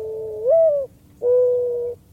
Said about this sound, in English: I thought it was a loon. Me and my friends were listening to this in class, and everyone was like, oh, it's a loon, it's a loon. No, it's not a loon, it's not an owl, it's a mourning dove.